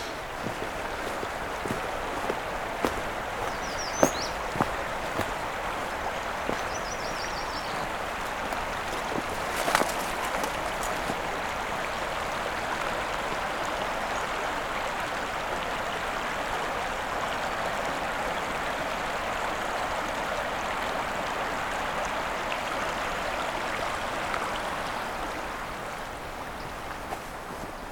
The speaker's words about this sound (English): Crane River is fast flowing right now. Definitely not getting across with my hiking shoes.